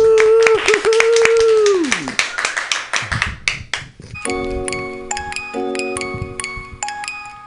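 Scattered hand clapping from a small group, sharp irregular claps at first over a sustained tone, then briefly alone before a rhythmic musical backing with bright chiming notes starts.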